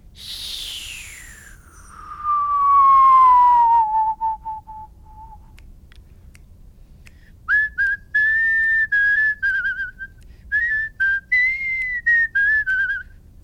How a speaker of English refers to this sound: So if you've been whistling and you've been hearing this wind noise that's almost whistling but not there, if you whistle downwards, you'll be able to get the note in 5 seconds.